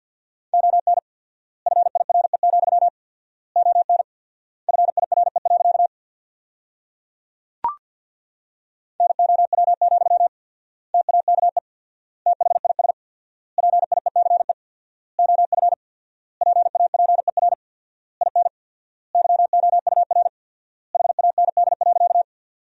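Morse code practice sent at 50 words per minute with 4x word spacing, sentences built from the top 400 words: a steady mid-high beeping tone keyed in rapid bursts, each word-group separated by long silent gaps, with one sharp click midway and no voices.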